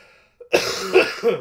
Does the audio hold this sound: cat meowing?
no